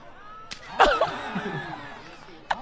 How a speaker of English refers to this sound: Jumping into a fucking slap. Like, I think he thought it was going to go way better than that.